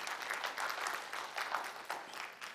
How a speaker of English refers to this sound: Yeah, you can give God a clap offering. Pretty cool.